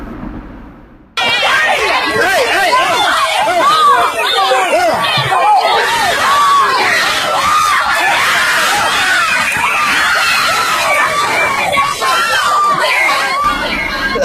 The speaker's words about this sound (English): This is audio from a brawl that broke out during a 12 and under softball tournament in Brickyard Park, Kingsport, Tennessee. Just listen to the audio.